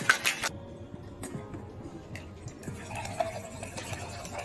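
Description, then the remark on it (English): Ice rattles and clatters inside a cocktail shaker while a Pama Christmas cocktail is being mixed, with a sharp burst of shaking at the start and then a steady churning rattle with no voices. “Shake it up.”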